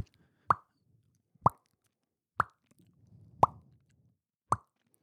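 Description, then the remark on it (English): Five sharp, hollow mouth pops, spaced about a second apart at a steady pace, imitating a shoulder joint popping as when a shoulder seemed dislocated; a faint low murmur sits under the fourth pop. “Because I heard a popping noise.”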